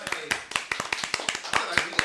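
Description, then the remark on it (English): Steady, rhythmic hand clapping, about five sharp claps per second for two seconds, moderately loud, with some voice sound murmuring underneath. “Let's give a clap.”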